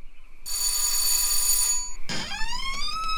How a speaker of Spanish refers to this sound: Ay, señora, disculpe. Disculpe que me haya atrevido a tocar el timbre. Es que ando perdido.